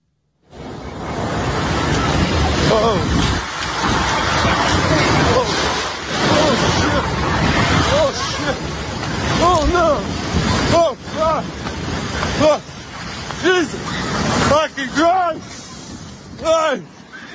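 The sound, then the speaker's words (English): A loud, rushing wash of surf and wind noise fills the scene as about 4 inches of ocean water surges up a street in Ventura, California, while several people shriek and scream in rising, excited bursts as they flee. “Watch these Californians freak out as they get swamped with a puddle.”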